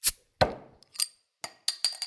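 About six long-necked glass beer bottles clink together several times in quick, uneven knocks, with bright ringing tones and one heavier, resonant clunk; fairly clear, no voices.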